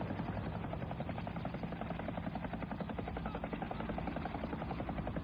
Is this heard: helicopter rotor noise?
yes